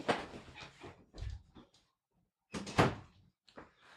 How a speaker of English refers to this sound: Try to shut the door there.